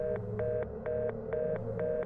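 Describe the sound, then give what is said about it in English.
A dead telephone line droning with a steady dial tone, broken by sharp, evenly spaced clicks about four times a second. No voices, just the flat electronic hum. “The phone went dead.”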